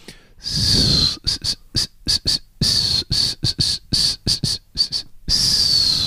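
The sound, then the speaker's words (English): Someone whistles an imitation of David Attenborough's narrating voice: a high, wavering tone in a long phrase, then many quick, choppy bursts in a talking rhythm, ending in another sustained phrase, with no words. “That's a whistle rendition of David Attenborough.”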